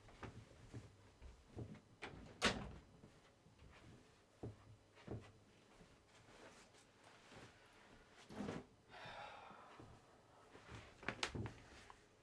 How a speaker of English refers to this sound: Had to walk away for a second. Had to close my door. Wasn't even closed all the way.